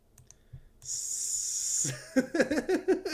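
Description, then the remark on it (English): A voice makes a drawn-out, snake-like hiss lasting about a second, steady, then breaks into a quick run of short voiced bursts. “I can just hear the snake hiss in between.”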